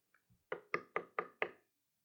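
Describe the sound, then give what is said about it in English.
Five firm knocks on a wooden door at midnight in a steady, even rhythm, fairly loud, preceded by a faint shuffle; no one speaks. “He goes and knocks on the door.”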